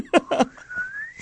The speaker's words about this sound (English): Where's the whistling noise?